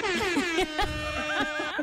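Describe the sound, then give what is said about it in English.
A blaring DJ air horn sound effect fires in rapid, stuttering bursts, loud, its bright harmonic blast repeating for about two seconds with a slightly warbling pitch. “I've got this DJ air horn sound.”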